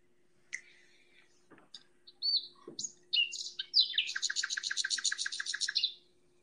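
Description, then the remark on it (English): Someone imitates bird calls with a few scattered chirps and whistled notes, then a long, rapid trill of repeated tweets that ends abruptly. Clear, with no talking. “Did you like my bird calls?”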